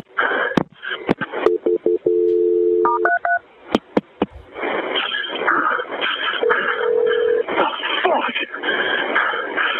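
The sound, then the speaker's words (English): A rapid run of touch-tone beeps as a dispatcher dials the fire department to transfer an emergency call, punctuated by clicks, followed by thin, muffled voices talking through the telephone connection. “Let me get the fire department on the phone to help you, okay?”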